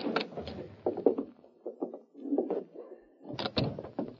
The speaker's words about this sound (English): Open your door and go right in.